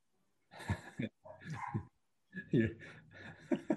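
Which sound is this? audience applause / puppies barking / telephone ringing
puppies barking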